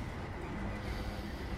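A steady, heavy rumble of a moving train fills the space, deep and continuous with a dense low roar and no pauses or voices.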